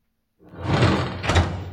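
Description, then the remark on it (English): A door swings or slides shut, a rushing, rumbling scrape that builds from silence and ends with a soft thud near the end. It is fairly loud, and no one speaks. “Not with the door open! Come in.”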